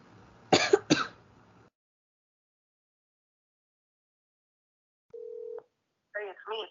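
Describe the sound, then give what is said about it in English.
A phone call to a father's phone being dialed: a brief, steady electronic tone sounds for about half a second after a long silence, then a short burst of warbling tones. A sharp cough-like noise comes at the start. “I'm going to try my dad one more time. I bet you his phone's still off, though.”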